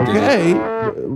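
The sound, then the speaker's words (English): A cow moos loudly, one drawn-out low call that swells and bends in pitch, with a brief second low note trailing at the end. “Those are the cows that I saved to sacrifice to God.”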